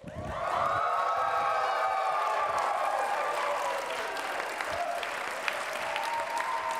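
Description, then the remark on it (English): A large live audience erupts into sustained applause and loud cheering as the lights are turned up and the camera is turned around onto the crowd, with whoops and shouts rising over dense clapping that stays steady and strong for several seconds. “And when I do, you all better lose your minds.”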